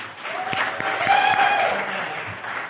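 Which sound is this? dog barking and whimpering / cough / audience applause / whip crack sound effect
audience applause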